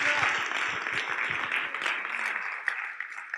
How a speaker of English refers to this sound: Somebody clap your hands in this place right here. Come on. Come on.